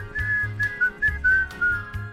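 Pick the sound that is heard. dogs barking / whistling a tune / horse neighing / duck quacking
whistling a tune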